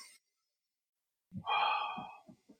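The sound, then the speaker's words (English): A sharp, forceful exhale of Bruce Lee-like power breathing before a throw, a heavy breathy burst lasting about a second, followed by a couple of short puffing breaths. “Gotta do the Bruce Lee like power breathing.”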